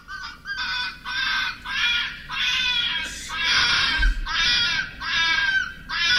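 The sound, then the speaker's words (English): Foxes screaming during mating: a rapid run of about six harsh, wailing shrieks, each under a second long, loud with short gaps between them and no voices. “It says here in one of these videos, it's foxes making love.”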